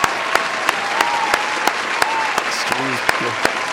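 An inserted round-of-applause sound effect from a crowd: dense, steady clapping with sharper individual claps standing out, and a brief vocal sound rising over it near the end, given as congratulations.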